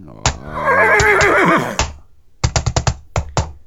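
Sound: horse neighing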